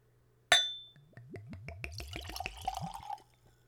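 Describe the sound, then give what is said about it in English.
A sharp glassy clink, then vodka glugs from a bottle into a clean Glencairn whiskey nosing glass, poured neat at room temperature, in quick, rising gurgles for a few seconds, fairly quiet, with no talking. “I will be tasting, as all spirits on this podcast, using a clean Glencairn glass. It's a whiskey nosing glass. Allows you to get a good look at the spirit. You can smell it and a good taste. So let's go for a pour.”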